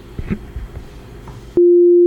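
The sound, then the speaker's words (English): Faint, muffled murmuring gives way abruptly to a loud, steady, mid-pitched censor bleep covering a swear word, holding unbroken for about half a second until the end. “And I'm gonna beep that out.”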